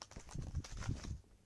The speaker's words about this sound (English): Now, you may hear rustling of paper